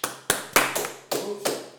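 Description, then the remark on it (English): A small live studio audience claps briefly to mark a one-year anniversary: about seven sharp, crisp claps in an uneven, sparse rhythm, each ringing out for a moment, with no voices. “A year for, clap it up.”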